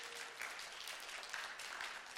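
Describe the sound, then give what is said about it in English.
An audience at Murphy Road Baptist Church applauds the church steadily, a dense wash of many hands clapping at once with no voices breaking through, holding an even level for the whole couple of seconds. “Yeah, we can actually clap on that thing.”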